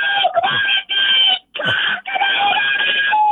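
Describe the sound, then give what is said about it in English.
A rooster crows loudly, a strained, drawn-out call broken by a few brief pauses, with no one talking over it. “Boy, that rooster is really cold.”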